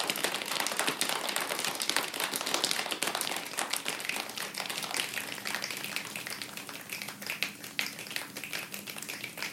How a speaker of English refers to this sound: Light rain.